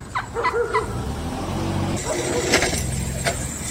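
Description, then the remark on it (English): A low, steady engine rumble of idling traffic held up by wild turkeys on Staten Island, with a few short, harsh turkey gobbles near the start and scattered squawks and a thin high whine later. “This is what it sounds like when turkeys block traffic.”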